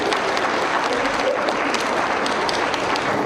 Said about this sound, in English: Okay, give them a round of applause for that.